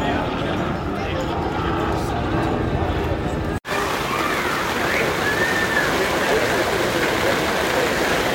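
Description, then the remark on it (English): A heavy rain downpour roars steadily at the American Pavilion, heard from under an umbrella, a dense continuous hiss broken only by a brief cut midway, with faint indistinct voices murmuring underneath. “It is raining. Good thing I have a place under an umbrella in the American Pavilion having a highlight and just soaking it all in.”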